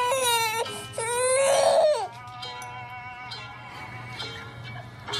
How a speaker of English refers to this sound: Well, here's a trick to try if your baby is crying.